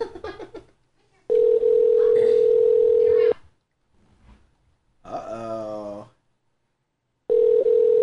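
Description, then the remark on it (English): Two long, steady ringback tones of an outgoing phone call, loud, with a pause between them; brief talk and a short laugh-like voice fill the gaps. “Answer the phone, boy.”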